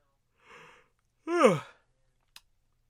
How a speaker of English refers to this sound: Apologies for the yawning, kids.